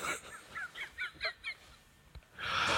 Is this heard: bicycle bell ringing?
no